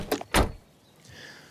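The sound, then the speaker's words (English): A safari truck door clunks shut as people get in, with a sharp metallic latch click just before a heavy thud, followed by a quiet rustle and faint hum inside the truck. “We've not even got the safari truck yet. Right, let's get in.”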